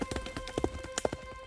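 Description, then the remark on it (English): Horse hooves gallop at a quick, uneven clatter as a rider spurs the horse back through an archway and away along a high street, each strike sharp against hard ground, with no voices over the steady run of beats. “Turpin spurs his horse back through the archway and onto the high street, galloping away.”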